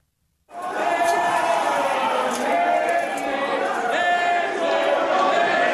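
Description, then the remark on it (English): A crowd of rioters chants and shouts together as they march up the stairs of the US Capitol toward the Speaker's office on January 6th, a dense, steady roar of many voices that begins abruptly and stays loud throughout, with no single speaker standing out. “recalls the sounds of rioters on January 6th.”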